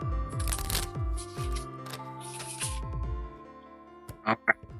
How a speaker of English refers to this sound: All right. I'll start shuffling. You tell me when.